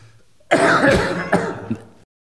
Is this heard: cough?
yes